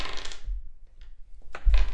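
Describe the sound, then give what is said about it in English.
Dice are rolled for a game, clattering and tumbling across a hard surface in two bursts of sharp, rattling clicks separated by a brief lull, with no voices present. “Give me a roll. Let's see if you can get it.”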